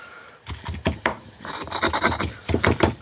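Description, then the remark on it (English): A knife chops parsley on a wooden cutting board to mince it fairly finely, in a quick, uneven run of sharp taps with a scraping rasp between them, growing busier toward the end, with no voices. “So now I'm chopping parsley.”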